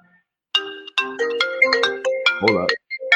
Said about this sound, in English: Hold up. We got a phone. That ain't me.